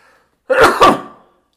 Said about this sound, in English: Oh, I must have the COVID because I sneezed.